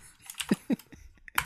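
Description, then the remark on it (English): Loud, clacky keystrokes on a computer keyboard in a quick, irregular burst as a message is edited and everyone is tagged, several sharp taps with brief pauses between them. “I hate that keyboard.”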